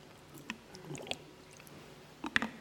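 Quiet sipping of water by a person pausing while reading a Bible passage aloud: a few soft wet slurps and mouth clicks, with a brief cluster of swallowing sounds near the end and no talking.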